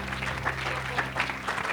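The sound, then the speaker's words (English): A church audience claps together in a dense, steady burst of applause welcoming a preacher to the pulpit, lasting under two seconds, with a faint low hum running underneath. “Let's give him a good Ben Dale welcome to this pulpit tonight.”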